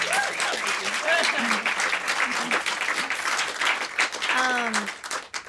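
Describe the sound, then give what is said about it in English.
A crowd at a live music performance applauds a guitarist steadily, the dense crackle of many hands clapping at once, with a few raised voices and cheers rising over the sustained ovation. “And also another round of applause for my beautiful, beautiful guitarist”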